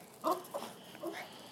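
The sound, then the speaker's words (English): A dog out on a night walk around the block gives three short, high-pitched yelping barks and whines in quick succession at a cat on top of a wall, moderately loud, with no other voices and a faint background hiss between them. “Bubbles right now sees a cat on top of the wall and she's trying to eat him”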